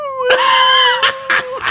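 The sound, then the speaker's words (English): A person imitates a wolf howl with a sustained, slightly wavering vocal tone lasting about a second, followed by a few short, breathy bursts. “Fucking also I laughed every time the like grown adult men voice actors would howl like wolves in, oh, and yeah.”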